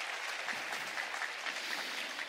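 A crowd claps steadily, a dense, even wash of many hands with no single clap standing out and no voices over it.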